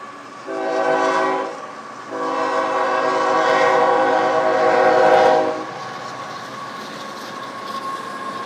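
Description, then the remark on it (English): A train horn sounds loud, a short blast followed by a longer sustained one, then fades into the steady rumble of a passing train with no voices. “But I'm going to be talking to a very special someone who lived and fulfilled a lifelong dream of taking a train across the United States.”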